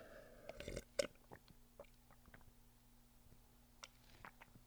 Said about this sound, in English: Let me take a sip here.